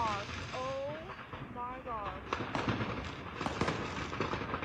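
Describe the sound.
Fireworks go off in a chaotic burst at a fireworks shop after a car drove into it: several shrill whistles rise at first, then dense, irregular crackling bangs pop rapidly over a continuous roar, with voices faintly audible underneath.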